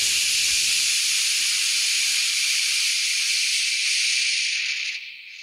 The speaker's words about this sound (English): when the cacophony in your head drowns out the symphony of your heart with a bed of white noise saying, shh.